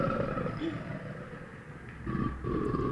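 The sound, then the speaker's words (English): A crocodile's deep, rumbling growl rolls on continuously for about three seconds, a low guttural grumble that swells louder toward the end, with some breathy noise mixed in. “Listen to a crocodile.”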